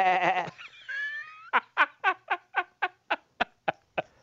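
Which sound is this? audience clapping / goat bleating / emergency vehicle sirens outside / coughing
goat bleating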